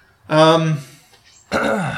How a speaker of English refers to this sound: That was a weird cough. Yeah. Just the way you covered your mouth. Like, you went to put two hands up for it. Yeah.